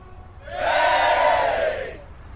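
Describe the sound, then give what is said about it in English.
A Sirenscape crowd-cheering sound effect: a crowd cheers in a single loud swell, many voices rising together into a bright roar that holds for about a second and then fades away. “Hi, some Sirenscape cheering there.”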